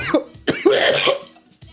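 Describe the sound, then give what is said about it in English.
A man coughs several times, short harsh bursts followed by one longer, rasping hack with a throaty, phlegmy rattle, then a final small cough. “You want to a coughing man about his shit.”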